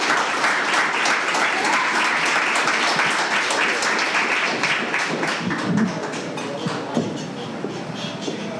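Sustained applause from an audience welcoming a priest who will lead them in prayer, a dense wash of many hands clapping that holds steady and then thins slightly toward the end.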